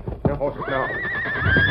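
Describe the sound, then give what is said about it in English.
A horse lets out a long, loud whinny that rises and wavers, with a few hoof clops and thuds just before it. “Get to the horses.”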